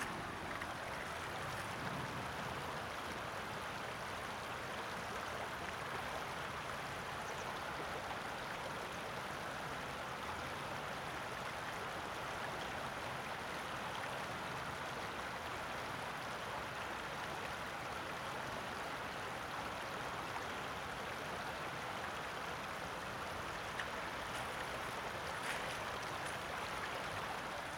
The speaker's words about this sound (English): So I'm walking across the stony beach to some rapids. Just going to listen to the song of the river for a little bit.